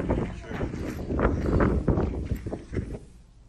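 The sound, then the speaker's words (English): Strong wind buffets a microphone outdoors, a loud, continuous low rumble broken by irregular gusting thumps throughout, with what may be a muffled voice underneath. “It's very windy, sorry, I can't do anything about that.”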